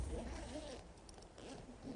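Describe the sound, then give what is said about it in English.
A suitcase zipper is pulled open in a steady, raspy run lasting a couple of seconds, fairly quiet, with a faint low murmur underneath. “Never can get these zippers right.”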